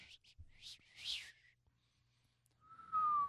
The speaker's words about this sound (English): I can't whistle. That was a whistle? That was my attempt. No, all I could do is... I'm not a great whistler either. My whistle like sounds like you're attempting to try something awesome and it's just, you can't do it.